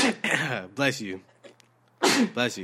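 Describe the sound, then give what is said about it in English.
A sharp sneeze breaks out with a voiced, breathy burst, set among brief vocal sounds and short pauses. “Bless you.”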